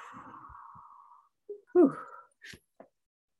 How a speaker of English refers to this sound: Taking a deep breath in and out.